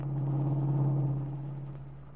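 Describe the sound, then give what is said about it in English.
A car's engine drones steadily with a low, constant hum and road rumble as it is driven through heavy city traffic, moderately loud, easing slightly toward the end, with no voices. “They lapsed into silence then, while Paul devoted himself to driving the car through the heavy city traffic.”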